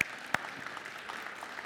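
A church audience applauding to thank their Kids Hope Director, a steady wash of many hands clapping with a couple of sharper claps standing out at the start, continuing evenly without voices.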